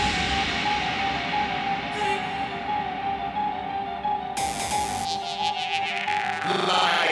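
A cat meows in a long, drawn-out wail that stays loud for several seconds, its tone holding steady before shifting near the end, with no one talking.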